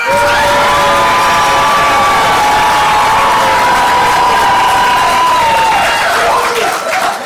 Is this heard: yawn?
no